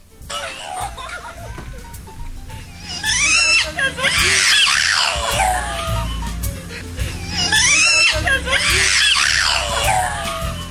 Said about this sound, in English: I'm going to actually let you decide whether or not this Boston Terrier is saying, I love you.